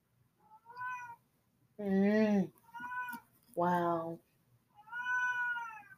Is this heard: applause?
no